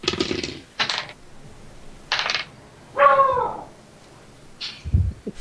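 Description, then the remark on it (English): A dog, locked in the room with its owner, barks once, a short harmonic yelp that bends downward, among scattered clattering clicks and knocks; no one speaks. “I'm apologizing for my dog. I've got him locked up here with me.”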